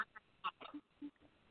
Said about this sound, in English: Your phone breaking up. We can't hear you.